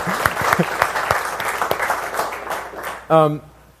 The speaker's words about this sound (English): Somebody wants to clap